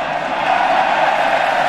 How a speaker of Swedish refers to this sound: Och nu jublar Djurgårdspubliken, för nu får man se reprisen på jumbon.